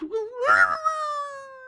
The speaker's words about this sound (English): Sounded like it was right outside my window. What is that? I knew it was a coyote.